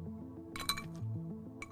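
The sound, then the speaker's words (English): Ice cubes clink against a glass of vodka on the rocks in a quick cluster of bright, ringing taps, then one more clink a moment later, over soft background music with no talking. “Yeah, some people really don't understand how I can just drink vodka on the rocks, but yeah, Russian blood, it's actually usually my go-to drink.”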